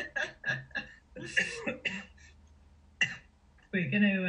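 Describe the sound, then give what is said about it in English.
Several short, raspy coughs and throat-clearing noises in quick bursts, fairly loud, with brief pauses between them and a rougher, voiced throat sound at the end. “sorry, I've got a cough.”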